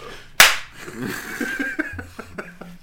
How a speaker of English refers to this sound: Let's do it. All right. High five. Okay.